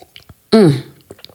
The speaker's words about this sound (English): I have coffee. Speaking of coffee, hang on. Let me have a little sip.